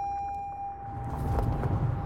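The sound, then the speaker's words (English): Low, muffled road rumble from inside a moving car in Maple Shade, New Jersey, growing louder and rougher after the first second, with a faint steady tone humming above it. No one speaks. “sitting in a car in Maple Shade, New Jersey.”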